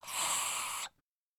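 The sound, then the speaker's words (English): A voice imitates a strangled attempt to scream while paralyzed in a dream: a single strained, breathy rasp of forced air, steady for under a second and then abruptly cut off, with no clear voiced tone. “Maybe you also tried to scream, but could only make a sound like this.”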